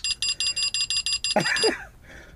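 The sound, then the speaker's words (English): A game show buzzer being tested goes off in a quick burst of about eight sharp electronic beeps, followed by a short swooping, bending tone that fades out. It is loud. “So, we're going to test our buzzers.”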